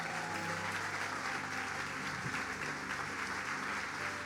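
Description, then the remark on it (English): Sustained applause from a crowd giving the Lord a big clap, a dense, steady wash of many hands clapping at an even loudness for several seconds, with a faint low hum underneath. “Can we give the Lord a big clap?”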